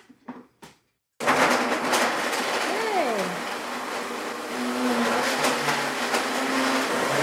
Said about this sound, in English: Two oranges, check. Okay. A cup full of frozen pineapple. Pineapple, check. Okay. And then water. Okay. So blend it? Yep, blend it.